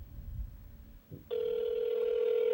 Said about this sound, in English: I'm dialing.